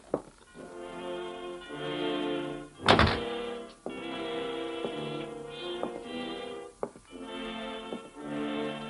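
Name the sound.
door thudding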